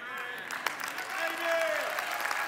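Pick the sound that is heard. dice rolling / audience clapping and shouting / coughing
audience clapping and shouting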